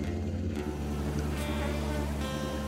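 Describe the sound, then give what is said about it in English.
A steady, droning buzz of insects in a hot desert hums continuously throughout, low and unbroken, with no voices and little change in loudness. “Bugs that seemed to be dormant mid-air.”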